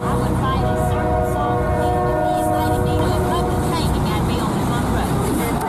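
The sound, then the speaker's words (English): A train rumbles past, its loud, sustained horn blaring for about the first three seconds over continuous heavy rolling noise, drowning out indistinct voices underneath, including Senator Smith speaking. “Now, this audio was a little hard to hear because a train was coming.”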